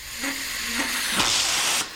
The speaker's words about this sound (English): In a large basement room in Rockville, Maryland, white vapor hisses from hoses as they charge eight steel tanks with liquid nitrogen. Inside the tanks, at 211 degrees below zero, are tiny glass vials, 1.5 million of them.